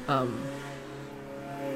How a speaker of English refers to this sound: Really? Really? Your piece of shit little red car you think needed to have that spoiler on it? Sorry. Sorry. Drive by.